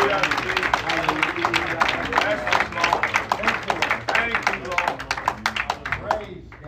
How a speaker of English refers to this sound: Give the Lord a hand clap if you can.